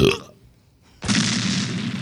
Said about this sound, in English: One by one, each goat explodes.